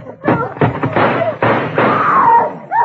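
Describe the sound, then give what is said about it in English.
A door being kicked in: a rapid series of loud thuds and splintering crashes, with a few heavy blows landing over a couple of seconds. “When I kick this door in, be standing there with your hands up or we start blasting.”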